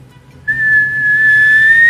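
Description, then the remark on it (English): A child whistles: a steady, fairly loud whistle starts abruptly and holds one sustained pitch, rising slightly toward the end, with a faint low hum underneath and no talking. “Can you whistle for me?”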